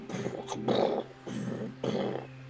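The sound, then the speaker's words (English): A giant ape growls in a series of rough, throaty bursts, about four in a row with short gaps, fairly loud, with no talking over it. “And you see this big, giant ape starting to come in through these monkeys.”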